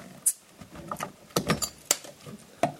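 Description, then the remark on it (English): A screw-off cap twisted open on a very cold bottle of Creemore Keller Bear beer, with a quick, irregular series of sharp clicks and faint crackling scrapes, several louder snaps standing out, and no talking. “That's actually a screw-off cap, but I like the sound effects.”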